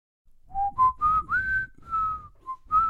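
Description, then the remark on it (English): A person whistles a short, slightly wavering tune with their lips: about eight breathy notes rising and falling in pitch, fairly clear, with no talking. “Can you whistle, …?”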